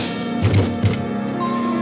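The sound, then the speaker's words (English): Two dull, heavy thumps of punches landing in a fistfight, about a third of a second apart, over a steady humming musical background with no speech. “Why is it that people who telegraph their punches are always the first to start swinging?”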